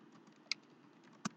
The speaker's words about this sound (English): Excuse the typing, ladies and gentlemen.